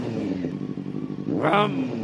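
A voice imitates an engine revving with the mouth, a buzzing, stuttering drone that climbs sharply in pitch and loudness near the end before dropping back.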